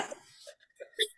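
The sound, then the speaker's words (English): Ducks outdoors quack a few times in short, nasal bursts, irregular and moderately faint, with the last call the loudest. “I can hear your pet rooster out there. Well, ducks, yeah, everyone likes to get in on the action here.”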